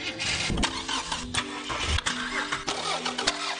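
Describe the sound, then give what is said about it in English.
A gas-burning car engine cranks and catches, rough bursts of the starter giving way to a steady mid-pitched rumble with harmonic hum, fairly loud, no voices. “For the last 100 years, the gas-burning engine has dominated.”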